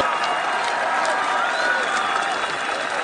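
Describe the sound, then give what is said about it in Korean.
A loud, sustained applause sound effect from a huge crowd, a dense continuous wash of clapping with faint cheers mixed in, steady and full throughout. “효과음 박수.”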